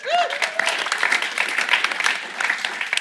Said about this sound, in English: round of applause for those peas.